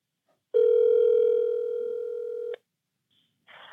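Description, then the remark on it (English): A loud, steady telephone dial tone of an incoming phone call drones for about two seconds and cuts off abruptly, followed by a faint beep and a brief burst of line noise. No one speaks. “And this phone call is brought to you by the Dodge Stealth.”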